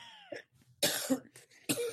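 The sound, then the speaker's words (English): A person coughs: two harsh, forceful coughs about a second apart, with a couple of smaller throaty hacks between them, and no talking. “Well, it makes me cough.”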